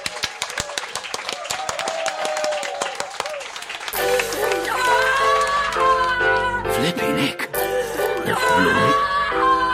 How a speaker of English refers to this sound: And give everybody a round of applause for the actors.